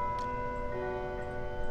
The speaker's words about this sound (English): Hold on, let's take a moment to allow the bell to ring. What time is it? It's signaling that it's 11 o'clock.